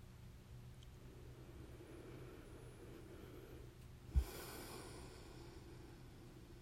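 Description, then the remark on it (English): A quiet, slow, deep breath in through the nose during a breathing exercise, ending in a brief, sharper snort-like exhale, heard alone over a low, steady background rumble with no talking. “Let's take just a nice deep breath, breathing in to your own four counts. And just breathing out slowly for six counts or more.”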